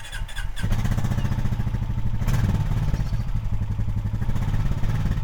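A motorbike engine revs steadily in the Tarkine region of Tasmania, its throbbing low rumble holding loud and continuous for several seconds with a brief rattle near the start and no voices.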